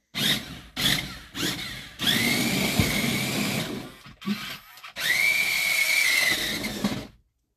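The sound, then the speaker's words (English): The small battery-powered toy chainsaw motor of a Mario toy revs in a few quick bursts, then runs in two longer sustained whines, its high buzzing pitch climbing as it speeds up, loud. “It's still got batteries. Mario's revving up his chainsaw.”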